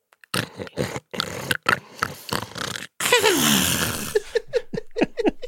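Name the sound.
imitated snoring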